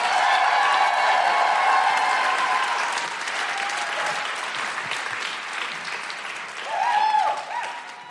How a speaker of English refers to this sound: And please keep that applause going for the incredible …!